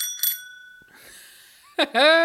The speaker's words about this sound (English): I'm just realizing now I could also do a sound effect. Because I have a little bell here. Here we go.